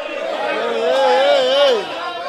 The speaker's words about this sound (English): There's a little pit in the middle of the arena, and it's surrounded by bleachers. It looks like a miniature stadium, and people are cheering for their birds, screaming at each other from across the bleachers to place bets.